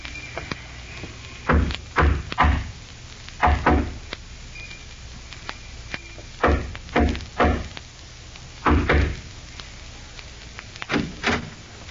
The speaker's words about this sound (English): Remember the code knock? Yeah. 3 long and 2 short.